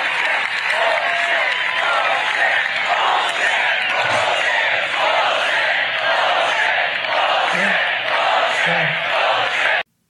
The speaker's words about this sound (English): The crowd, that scene of Trump's crowd screaming bullshit, it's like a bad Barry Levinson movie, isn't it?